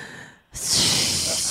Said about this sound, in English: He was breathing.